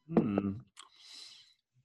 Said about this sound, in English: It's hard to slurp a nitro.